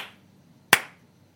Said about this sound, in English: Listen, that's a slow clap from me.